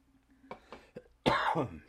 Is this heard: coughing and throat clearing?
yes